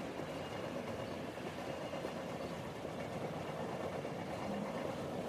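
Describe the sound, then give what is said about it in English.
A train rolls steadily along the rails, entering a forest after passing wide meadows, with a constant rumble and a faint rhythmic clatter underneath, holding an even loudness throughout with no voices. “The wide meadows have passed by, and the train is entering a forest.”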